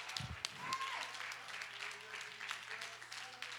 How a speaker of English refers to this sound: If you believe that he's a powerful God, would you clap your hands this morning and give him great praise right now?